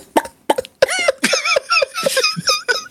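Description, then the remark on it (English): A quick series of sharp, voiced hiccup-like gulps from a woman, about ten in three seconds, fairly loud, with a squeaky pitched edge and no talking. “She got hiccups.”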